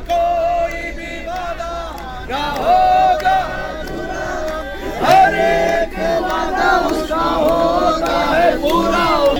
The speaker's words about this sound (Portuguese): Uma multidão que está acompanhando o sepultamento do pastor Shankar, que foi assassinado na noite do dia 17 de março. Os irmãos estão cantando com força.